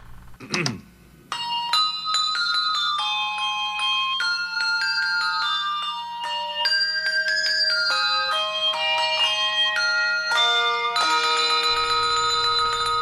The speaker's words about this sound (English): Dude, yeah, it's just them ringing the bells. And I always love the little extra one at the end. He's ringing ding, his little ding, bell, ding, a little ding, extra. But take a listen. Take a listen to this fun nostalgia.